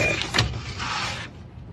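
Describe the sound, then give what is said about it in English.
Someone with allergies blows their nose outside: a short sharp snort followed by a longer, steady, breathy honk of air, both fairly loud and noisy, with no talking. “I'm gonna blow my nose again.”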